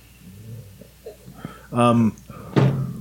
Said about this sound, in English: Slammed his head.